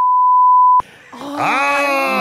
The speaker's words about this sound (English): And you could beep this if we get our timing right. One, two, three.